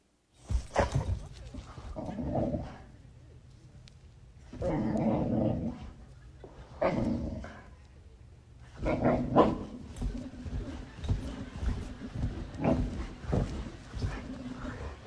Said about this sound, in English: Now, I found this one dog who's trying to wake up their owner, and watch the screens and see if any of the other dog owners can identify with this.